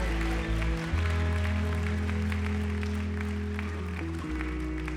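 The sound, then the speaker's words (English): An audience claps steadily in a dense, continuous patter over loud, sustained low keyboard chords that shift pitch a few times, with no voices speaking. “Clap like a season of acceleration and restoration is your portion.”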